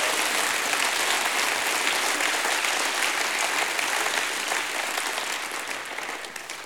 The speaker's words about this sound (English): Give God a hand clap of praise in your own life.